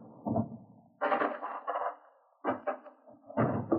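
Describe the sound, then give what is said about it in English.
A drawer is handled while money is put inside: a series of wooden thumps and scraping slides in four separate bursts, moderately loud, with short pauses between them and no talking. “Yeah, I'll put it in this drawer.”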